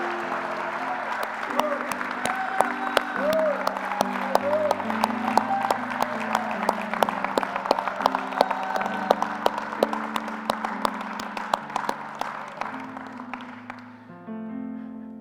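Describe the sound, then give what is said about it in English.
A church audience breaks into sustained, dense applause and scattered cheers as a clap offering to the Lord, with sustained organ or keyboard chords beneath; the clapping stays loud throughout before thinning out near the end as the music carries on. “Now give the Lord a big clap offering.”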